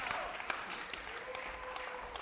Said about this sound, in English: if you guys would welcome him, I've asked him to come and share with us tonight. Oh, you can keep clapping.